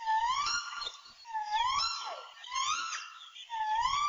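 An alala, or Hawaiian crow, gives a territorial call: four loud, hoarse, harmonically rich caws that rise and bend, repeated at a steady pace of roughly one per second, with no talking.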